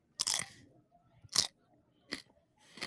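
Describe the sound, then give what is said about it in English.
Four sharp, brittle crunches of a dry, stale cracker being bitten and chewed, spaced irregularly with brief quiet gaps between, no talking. “I'm going to crunch this up so you know I'm eating it.”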